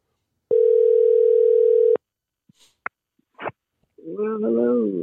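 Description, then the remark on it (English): A loud, steady telephone dial tone hums for about a second and a half as an outgoing call is placed to a guest on the Scandalous Radio show, then cuts off into a few sharp clicks and a short, warbling voiced sound. “So let's go ahead and make a call right now and get our guests on the show.”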